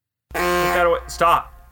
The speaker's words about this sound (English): That was a delayed honk. Hey, who's got that horn? Who's got that? Put that away.